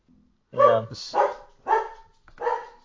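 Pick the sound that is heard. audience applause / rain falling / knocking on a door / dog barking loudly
dog barking loudly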